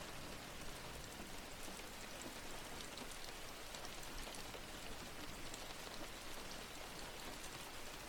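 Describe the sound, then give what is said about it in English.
Steady rain patters on the roof of a house, a dense, even hiss of countless drops with scattered sharper ticks, soft and continuous throughout with no voices. “Imagining each raindrop hitting the roof.”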